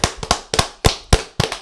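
A clap sound effect: a rapid run of about six or seven sharp, crisp hand claps in a steady rhythm, each with a brief ringing decay, with no voices.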